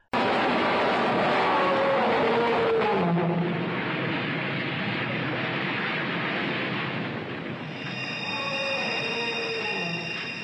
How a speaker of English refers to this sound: And if you listen, it roars. Oh, yeah. You can hear like this death roar. As it goes over the cliff, the twisting metal and all that sound. And then there's a dinosaur type roar yeah. mixed in there.